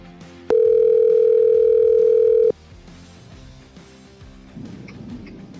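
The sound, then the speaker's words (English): A single steady electronic ringback tone of an outgoing phone call to reach a guest sounds for about two seconds, loud, then gives way to a quiet line with faint background noise. “Phone ringing.”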